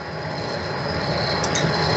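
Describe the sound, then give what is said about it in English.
A steady, rumbling train noise fills the whole stretch, a dense low roar with thin high metallic whines riding on top, continuous and moderately loud, with no voices. “I am definitely getting a weird train noise.”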